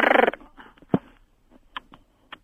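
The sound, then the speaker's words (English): A radio phone-in caller from Upminster imitates a monkey with a loud, rough burst of chattering, then a sharp yelp and a few short, high hooting calls spaced out, with no words spoken. “You're doing a monkey?”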